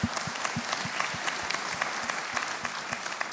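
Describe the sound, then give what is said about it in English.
A crowd claps steadily, the dense patter of many hands filling the space at moderate volume, with no talking over it. “Yeah, we can applause. Why not?”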